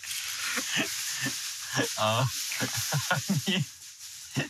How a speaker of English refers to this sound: Is there a way to avoid this noise in the background? It's like they're juggling pots and pans. They're making food.